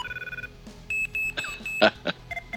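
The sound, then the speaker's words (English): A telephone line rings with short, repeated electronic tone bursts in a steady pattern, fairly clear, with faint clicks between them and no one talking; a test ring to a dialed number in the same MPA as an ADU system. “So I just put in a number that's based in the same MPA as that ADU system. So it should be ringing.”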